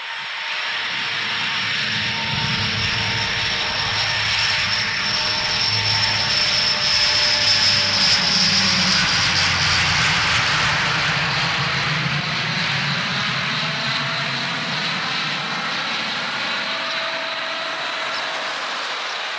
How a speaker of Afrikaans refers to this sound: Kom ons luister vir 'n oomblik na die bekende klank van 'n Vickers Viscount verbyvlug.